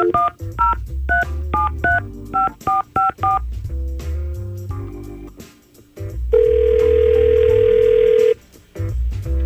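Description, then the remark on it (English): A quick run of touch-tone keypad beeps dials a number for a call from the Y100 radio show, followed by a few stray tones and then a long, steady ringback tone on the line. No one speaks. “So let's just try and get Shauna on the phone.”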